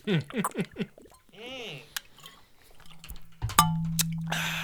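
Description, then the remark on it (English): A plastic water bottle lid snaps and clicks a couple of times, with a brief crackle of plastic, during a water break, while people talk and make playful vocal sounds around it. “That's my lid. You like that?”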